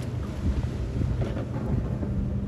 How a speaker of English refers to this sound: Oh, here we go. Jet skiing now.